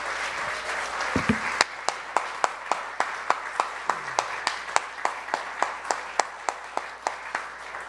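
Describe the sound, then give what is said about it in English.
Mourners at a memorial service applaud the life of a deceased woman. A dense wash of clapping has one sharp, steady beat of claps repeating evenly about every quarter second throughout, with no talking. “Would you like to give one more round of applause for the life of Leola, and thankfulness to God for all that she means to us?”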